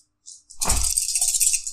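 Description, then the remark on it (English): Chunky dice clatter and rattle together as they are rolled for a magic roll, a couple of quick shakes followed by a dense, continuous rolling clatter with a bright, clicky top and a low thudding underneath. “Chunky dice.”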